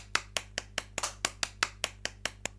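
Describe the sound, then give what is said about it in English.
A steady run of about eleven sharp hand claps in thanks to volunteers, evenly paced at roughly four per second, crisp with no voices over them. “I might not be able to come on TV to say thank you to you, but I'm going to clap.”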